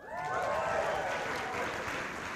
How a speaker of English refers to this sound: we say something good happened, you guys usually go, wow, that's good, and you can clap. So wait, ready?